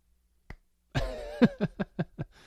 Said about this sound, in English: Applause here.